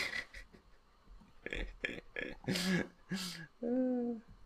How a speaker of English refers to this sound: I need to cough,